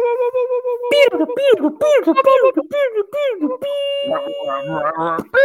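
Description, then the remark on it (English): A voice imitates a 56K dial-up modem connecting, with rapid warbling chirps and swoops, then a held steady tone over shifting, squealing screeches, loud, all within about five seconds. “Oh, I'm like, wait, is this a 56K modem?”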